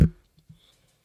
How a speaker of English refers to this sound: is clicking his pen